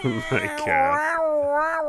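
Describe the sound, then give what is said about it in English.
A cat on a patio lets out a single long, drawn-out yowl, fairly loud, its pitch wavering and sliding downward over about two seconds after a few short choppy cries. “And this cat, every video is just.”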